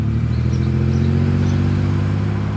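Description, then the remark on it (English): A truck engine idles with a steady, low, rumbling drone as it pulls up to a house at about 7 a.m. in foggy Bremerton, Washington, running continuously without pauses and with no voices. “He pulled up to the man's house on Jensen Avenue at about 7 a.m. As he got out of his truck,”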